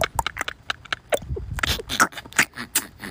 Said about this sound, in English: Oh, do you hear it? It does work, guys. It does work. It's starting to rain again.